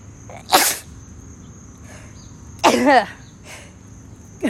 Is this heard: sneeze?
yes